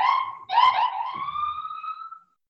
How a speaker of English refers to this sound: sorry, I got a siren.